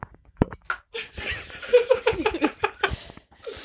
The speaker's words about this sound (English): We're drinking Coors Light Silver Bullets. Silver Bullet. Paired with a shot of Manitowani whiskey. Yeah, to put some hair on your chest. Yeah, so let's clink these bitches. Cheers, doggies.